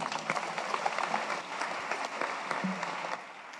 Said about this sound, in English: Thank you all. Thank you. Thank you. Amazing. And I think we should clap for all of them.